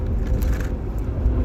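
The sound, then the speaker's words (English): A very low-flying army helicopter roars overhead: a loud, continuous low rumble with a slightly choppy texture, steady throughout, with no voices. “So, wow, that's a really low Army helicopter.”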